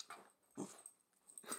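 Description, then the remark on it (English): A dog named Maggie, told to speak, gives three short, soft barks spaced unevenly over under two seconds, fairly quiet, with breathy, huffing edges and no talking. “Wait, let's have her actually bark.”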